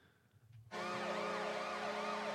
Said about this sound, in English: Like that siren. Like if they didn't have the siren.